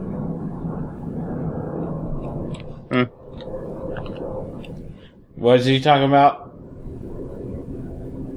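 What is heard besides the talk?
airplane flying overhead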